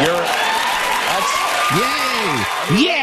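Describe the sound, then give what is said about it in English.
A large crowd applauds steadily and loudly, with whoops and excited shouts rising and falling over the dense clapping throughout. “And the crowd cheers like crazy.”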